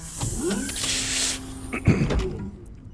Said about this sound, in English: She immediately turns around, opens the door.